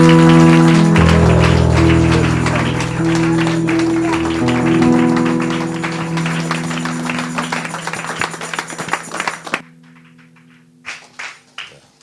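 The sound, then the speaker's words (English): A church audience gives a standing ovation, clapping and applauding to welcome a visiting bishop over loud, sustained organ-like music; the music stops abruptly near the end, leaving a few scattered, fading claps. “So with a hand clap offering a standing ovation as unto the Lord, let's welcome our Father”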